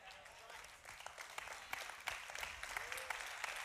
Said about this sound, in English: Hey, if we're gonna clap, let's do it well.